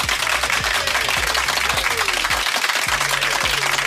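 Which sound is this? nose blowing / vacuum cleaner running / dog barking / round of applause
round of applause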